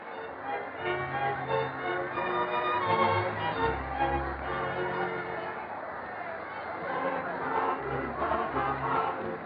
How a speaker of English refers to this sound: Everyone out there is so happy to be alive and well again. They're dancing and cheering.